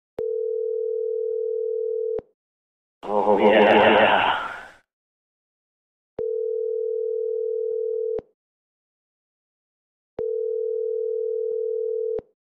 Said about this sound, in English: I'm either on the telephone or away from my desk right now. The sounds of the tone, please leave me your name, telephone.